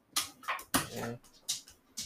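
A dog snuffles in quick, breathy bursts, with a brief high whimper in the middle, then more short sniffs; no one speaks.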